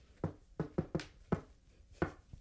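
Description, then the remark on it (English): A rhythmic secret-knock pattern of seven sharp, hollow raps tapped out in an uneven rhythm: a quick cluster, a pause, then two final knocks, imitating a secret knock on a door that police could use instead of pounding. The knocks are fairly loud and no one speaks. “I just had an old joke about how the cops should have a secret knock instead of the pounding on the door, you know, the...”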